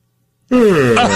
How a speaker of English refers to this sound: Now, wait a minute. You guys can't start yawning yet.